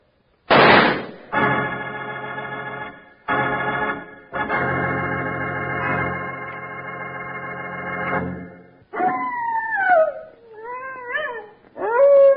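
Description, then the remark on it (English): A hungry prairie wolf gives a few wavering howls that rise and fall in pitch, heard clearly near the end after a long, loud sustained droning chord, with no talking. “That's the howl of a prairie wolf, Charlie. And a hungry howl at that.”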